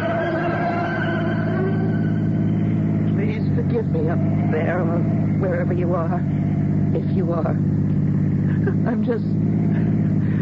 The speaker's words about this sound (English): I don't even know what I'm doing in the car, hurtling through the night too fast for this mountain road.